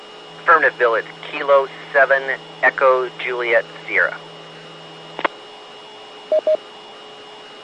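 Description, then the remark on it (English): A narrowband radio voice, a station calling in through Shaw Butte, comes through in choppy bursts over a steady hum, ending with a squelch click and then two short beeps. “Copy for the log. You broke up also.”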